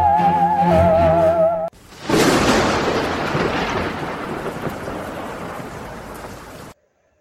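thunder with rain

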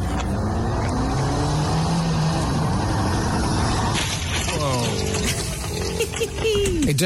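car engine revving

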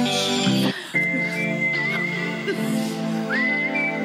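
whistling

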